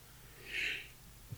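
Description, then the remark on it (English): A soft, breathy intake is followed by a sudden sharp sneeze burst right at the end, with no talking. “Your sneeze? Sneeze, yeah.”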